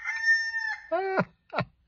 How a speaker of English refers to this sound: Yeah, today's Monday. It's important for us to have a rooster crowing and cock-a-doodle-doo, right, for us to wake up. Rise and shine, my friends.